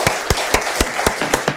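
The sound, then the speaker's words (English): Audience applause at a commission meeting after a member of the public finishes speaking: a steady hiss of many hands with sharp, evenly spaced claps standing out about four times a second, fairly loud and with no voices. “Ladies and gentlemen, I know you want to show your appreciation, but please do not applaud.”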